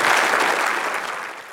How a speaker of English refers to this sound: please give them, all of them, a big round of applause.